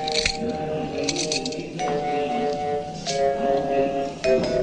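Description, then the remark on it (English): Handcuffs click shut on two men with their arms around a post, several sharp metallic clinks and ratchets spread across a few seconds, set against a steady, humming tonal background. “I took the keys and left Schwartz and Hodges handcuffed to the post, gagged with shreds of Hodges' shirt.”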